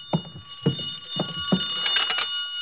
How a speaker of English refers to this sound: I could hear the phone ringing from somewhere inside, so I waited to see if anyone answered it. On the third ring, I tried the door.